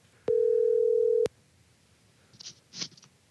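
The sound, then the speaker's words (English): A telephone dial tone heard while placing a call sounds as one steady, loud, mid-pitched hum lasting about a second, then cuts off abruptly, followed by quiet with two faint, brief rustling bursts. “Let's go ahead and dial him up here.”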